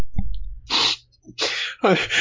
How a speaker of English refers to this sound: I just had to sneeze, and I didn't think I hit the mute button fast enough, and I was trying to make it quiet, and I sneezed, and it was so loud. It's the loudest I've ever sneezed.